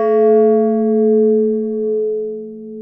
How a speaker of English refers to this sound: The bell continues to call the peoples to be together. They was in the top of the bell's tower to call everybody, and now they're inside the church and they continues to call. They always call.